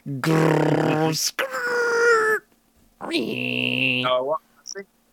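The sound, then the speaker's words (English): A voice imitates dial-up modem noises in three loud, strained bursts of droning, wavering tones, with a brief high screech midway and a few short chirps at the end. “So you just call me on your phone, and I'll make modem noises.”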